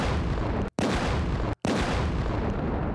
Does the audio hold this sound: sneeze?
no